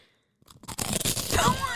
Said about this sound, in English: Shh, ASMR garlic toast.